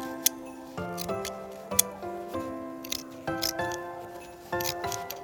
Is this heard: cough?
no